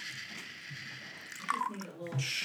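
Whiskey is poured over ice in a short, bubbly glugging burst with a few gurgling, rising tones. The pour is fairly soft over a low background murmur.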